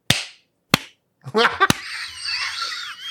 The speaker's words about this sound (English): Well, say something, and we'll clap. Say something clap-worthy. Huzzah! Okay, no, okay. Just clap. 1, 2, 3.